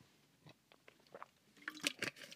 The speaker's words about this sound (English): Oh my God, hold on, let me take a sip of this juice.